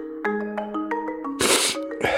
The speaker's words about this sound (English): No, that sniff was on the record. I was making a point. What point? That I have a sniffle and a cough.